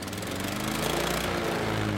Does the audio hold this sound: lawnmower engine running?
yes